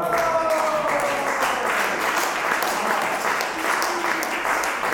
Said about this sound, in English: Team GB actually lose to the Germans, but I love how people here, they're so passionate about the sport that they clap almost as loudly for the opposition because they set a new world record and they're just genuinely impressed with what's happened.